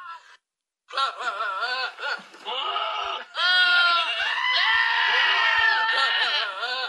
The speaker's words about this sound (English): That's all the goats. That's a bunch of screaming goats.